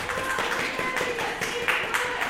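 A crowd of people clapping together, a dense, steady patter of many hands that holds at an even moderate loudness for about two seconds, with no voices on top.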